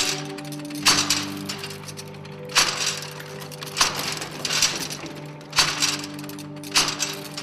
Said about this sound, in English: Dorn was kind enough to send along a clip of their completed machine. Here's the real audio of Difference Engine Number 2, the first ever completed.